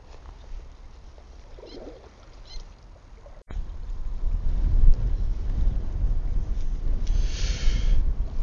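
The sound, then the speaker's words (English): Wind blows along a rocky, seaweed-covered coast where someone is fishing on a fairly warm spring day, starting as a soft rumble, then, after a brief cut, surging into a loud, steady roar that buffets the microphone, with faint water sounds beneath and no talking. “Oh, the wind. It's a story of fishing the coast, this wind, no doubt about it.”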